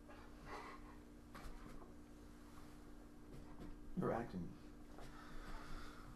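A dog named Frank makes a short burst of snuffly, whiny noises partway through, over a steady low hum and faint murmuring in the background.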